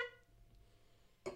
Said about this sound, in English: That's how you make a point? That's the theory horn.